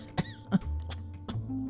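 A few short, dry coughs in quick succession, spaced unevenly and fairly soft, over a low steady hum with no talking.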